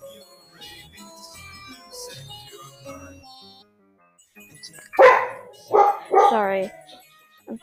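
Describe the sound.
A pet dog barks loudly, three sharp barks in quick succession near the end, after a stretch of softer speech with background tones.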